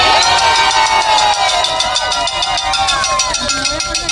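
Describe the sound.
A large crowd at a November 16th solidarity rally for Bolivia cheers and shouts steadily, with many overlapping voices forming a loud, continuous roar, some high-pitched whoops rising above it.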